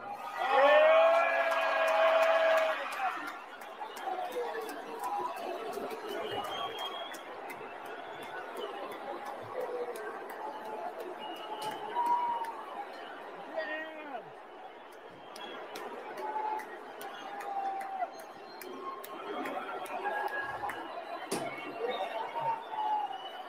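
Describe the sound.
In live video footage, a large crowd boos the man introduced as the richest man in the world, in a dense, steady roar of many voices lasting throughout, with scattered sharp pops. A short, loud, tonal amplified sound opens it.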